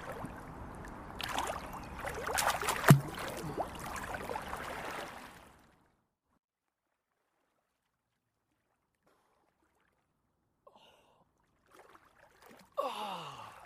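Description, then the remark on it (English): Continuous splashing of open-water swimming strokes churning the water of the River Thames at Wargrave, with mist rising off the water, for several seconds, then near silence, ending with a few quick breathy gasps. “Open water swimming in the River Thames, Wargrave”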